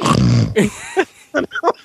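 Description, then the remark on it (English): A voice mimics loud snoring: a long, rough, rasping snort followed by several shorter, breathy grunting bursts, each sputtering out in an uneven rhythm. “Oh, I'm surprised he hasn't started snoring.”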